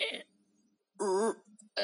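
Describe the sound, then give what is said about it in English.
A voice mimics a stomach gurgling after eating fermented cabbage: a short throaty rasp, a pause, then a warbling, wobbly groan of about a third of a second, and another rough burst at the end. “All I want to do in life is just eat my fermented cabbage and go about my day without having my stomach go...”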